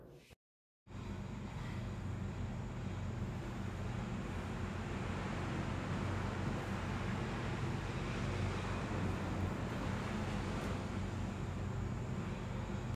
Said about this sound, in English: So you may hear a little bit of a background noise, but the beginning of this episode is the sweet sound of the Pacific Ocean.